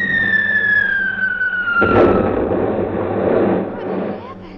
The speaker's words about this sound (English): I think we'll open up on them any second now. Open up? Yes, our anti-aircraft.